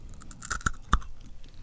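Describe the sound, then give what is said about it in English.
Crunching of Caramel Crunch M&M candy, a hard caramel center coated in milk chocolate with an M&M shell, a few sharp bites and cracks spaced irregularly over the chewing, fairly quiet overall with no talking. “So it's crunchy caramel coated in milk chocolate, and then it's got the M&M shell on the outside, but I'm not sure if we can capture this on mic or not.”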